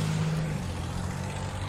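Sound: car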